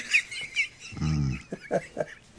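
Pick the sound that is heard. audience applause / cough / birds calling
birds calling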